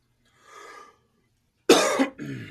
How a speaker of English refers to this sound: Ooh, I just coughed and I farted at the same time.